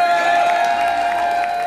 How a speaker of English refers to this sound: Weren't they all incredible? Can we have a round of applause for all of the bands that have been here so far?